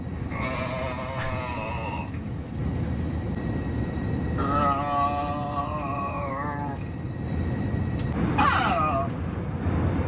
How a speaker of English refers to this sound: Someone on this flight seems to have broken into the intercom system and continues to make a sound that is somewhere between an orgasm and vomiting.